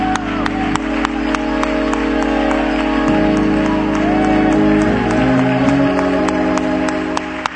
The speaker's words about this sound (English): Go down clapping your hands, if you will, and shout to God a great, great praise. Come on, praise.